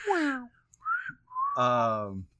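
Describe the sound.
A person whistles a short, wobbly tune, just a few sliding notes with a brief pause between them, partly mixed with breathy, voiced humming sounds.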